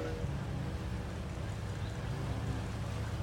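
boat approaching on water

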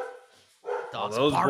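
dogs barking

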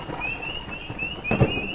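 rain falling

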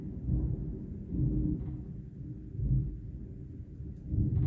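thunder rumbling

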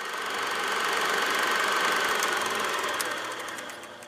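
race car engine

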